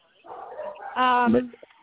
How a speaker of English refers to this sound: Oh, well, hold on. Let me get away from the dog. Sorry.